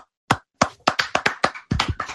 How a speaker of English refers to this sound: Someone on Twitter just said, pull my hair, daddy. Can we get a round of applause for that, man?